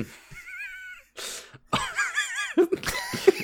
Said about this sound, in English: Like, starts coughing in the back because he still has cancer in our show.